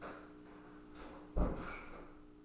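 A door swings shut with a single muffled thud partway through, followed by a short fading rumble, over a quiet, steady room hum with no talking.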